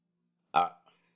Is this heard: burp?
yes